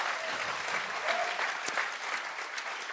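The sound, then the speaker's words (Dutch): Steady audience applause for the preachers, a dense patter of many hands clapping at once, sustained at an even level throughout with no voices standing out. “Come on, why don't we give them all a hand?”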